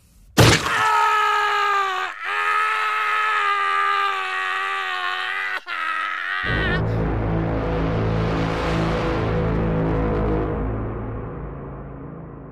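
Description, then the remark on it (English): A loud, sustained agonised scream of pain as a stony surface caves in a chest and hips crack open runs for about six seconds with two brief breaks, then gives way to a deep, rough, drawn-out groaning roar that fills the rest. “Rima hollered in pain as the stony surface caved in her chest. Sushant let out a chilling cry as his hips cracked open with a thunderous sound.”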